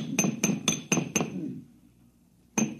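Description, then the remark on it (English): Five quick metallic bangs strike the sealed power pack on an air conditioner condenser in a steady rhythm, each ringing with a bright, glassy clang, then a pause and one more sharp hit. “Yeah, if you keep banging at it like that, you'll crack the seal on the atomic shielding and your posterity will thank you.”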